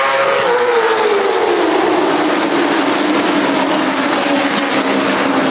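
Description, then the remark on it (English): Race cars roar around a speedway track during a CARS Tour race, loud, with one engine's pitch sliding downward as it passes by amid a constant wash of engine noise. No one speaks. “Let's enjoy the sounds of the Cars Tour.”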